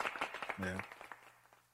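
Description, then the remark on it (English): A brief round of quick hand claps, a rapid run of sharp slaps mixed with a voice talking over them, thinning out and fading within about a second. “Let's clap I know. It up for that, man.”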